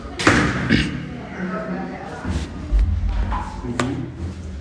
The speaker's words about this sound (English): The interceptions he's talking about, those booms you're hearing, is the sound of Israel shooting down rockets that are coming from Gaza.